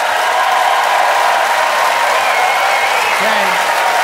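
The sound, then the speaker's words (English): A large audience at the Neptune Theater applauds steadily to vote for a speaker's ocean-themed speech, a dense, continuous wash of clapping that stays loud and even throughout, with no voices standing out. “Neptune Theater, by applause, who thought that Arthur's oceanic oration was worth its salt and had incredible depth.”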